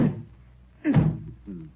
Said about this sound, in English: have you any favorite way of taking off weight? Oh, sure. I bang this against the wall like this.